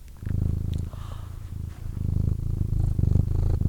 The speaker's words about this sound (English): Oh, she's really purring too.